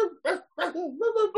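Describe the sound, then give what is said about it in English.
A few people imitate dog barks and yips in quick succession, fairly loud, with voiced, pitch-wavering whoops running together over about a second. “Do we bark today since Pete's not here?”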